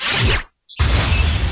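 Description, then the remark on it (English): Spaceship cannons, all firing at an enemy ship, fire in two loud, noisy blasts split by a short silent gap, each a broad hissing burst with a deep rumbling thump underneath. No one speaks. “Opening fire, all cannons.”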